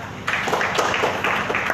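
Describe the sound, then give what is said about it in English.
An audience, told to clap for themselves, breaks into applause, a dense wash of many hands clapping at once that starts abruptly and keeps going steadily, moderately loud. “Clap for yourself.”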